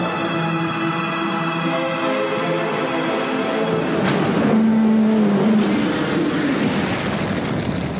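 Powerful boat engines roar and whine continuously in a boat chase, with a rushing wash of water and spray building up midway as the boats race past, loud and dense throughout with no voices.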